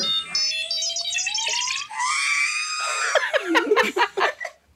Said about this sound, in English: So I usually have a very long scream happening at the end of things.